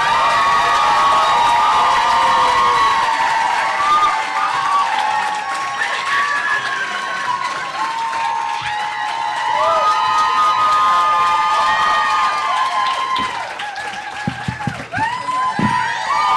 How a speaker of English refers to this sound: Now, please put your hands together. Let's get a big round of applause going for your host coming to the stage right now.